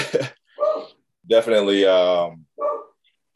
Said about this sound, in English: I think my daughter opened her door, so my dogs are barking. If you can hear that.